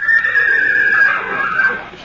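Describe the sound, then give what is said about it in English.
A wild horse at a stable neighs loudly, a single drawn-out whinny with a shrill, wavering pitch that gradually tapers off over about two seconds. “I can't ride that wild horse.”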